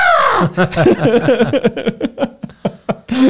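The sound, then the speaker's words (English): A voice imitates a screaming goat: a wavering, bleating cry that starts with a high falling wail and breaks into a quick series of stuttering, pulsing bursts, fairly loud. “Screaming goats.”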